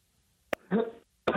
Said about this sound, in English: It sounded like one and a half. It sounded like he was clearing his throat for the big one cough. Was it a double cough?